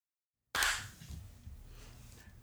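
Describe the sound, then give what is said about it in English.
A single sharp hand clap bursts out of silence, loud and crisp, then fades into a lingering ring over a low, steady rumble. “You didn't have to clap.”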